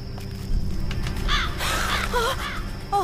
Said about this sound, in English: Oh, calm down. It's just a crow.